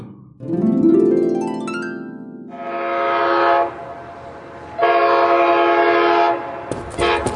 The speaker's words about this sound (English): Oh, look! The VR train is leaving in 2 minutes. Hurry up, boys. There's our train. Let's go.